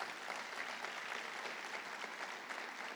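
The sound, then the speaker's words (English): An audience gives Jesus a strong round of applause, a dense wash of many hands clapping at an even, sustained loudness for the whole stretch, with no voices standing out. “Let's give Jesus a strong round of applause.”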